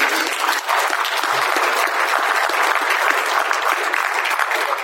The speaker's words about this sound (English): I just give a round of applause to everyone.